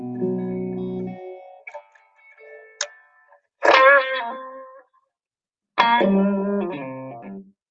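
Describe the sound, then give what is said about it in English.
Bright plucked notes and chords drenched in spring reverb from an analog spring reverb modeler, each strike blooming into a shimmering, metallic wash that rings out and fades, with a quiet gap between phrases; no one speaks. “That reverb is a spring modeler of a room.”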